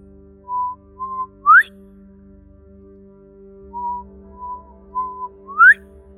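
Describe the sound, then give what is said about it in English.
Someone whistles a bird-like call twice: a few short steady notes followed by a quick upward-sliding whistle, clear, over a low steady background hum. “Could hear the birds whistle. The birds would whistle in the mornings.”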